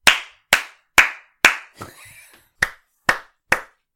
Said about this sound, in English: Why are you clapping like that?